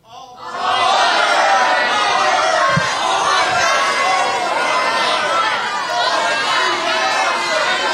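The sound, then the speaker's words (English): A large live audience erupts at once into loud, overlapping shouting of which team they prefer to win, Auburn or Georgia, a dense wall of many voices calling out together that stays steady for several seconds. “I just want you guys to shout out who you would prefer to win this game.”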